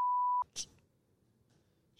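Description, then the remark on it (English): A steady, loud censor bleep tone runs for under half a second, followed by a short sharp noise and quiet murmuring, then the same bleep cuts back in right at the end. “Gonna have to beep them.”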